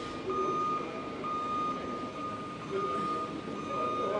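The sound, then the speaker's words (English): A haulage truck at least 10 metres wide sounds its reversing alarm, a steady, high electronic tone with brief gaps, over constant rumbling engine and yard noise, as forklifts guide a waka out of its storage shed in windy Wellington. “And as I look to my right, there's a large, it's got to be at least 10 metre wide haulage truck, forklifts.”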